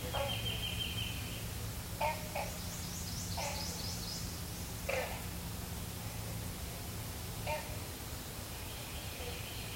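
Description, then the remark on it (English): A pig frog grunts in short, deep bursts, some doubled, spaced a few seconds apart against a steady hiss of outdoor ambience, with faint birdlike chirps high in the background. “I still love that pig frog sound.”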